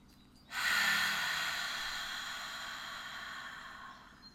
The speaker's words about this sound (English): And let's take a nice deep breath in through your nose, breathing really slow and deep.